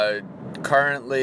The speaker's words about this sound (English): Currently on the way down to Providence, Rhode Island, coming from Boston, so driving south. Some heavy traffic going by Gillette Stadium.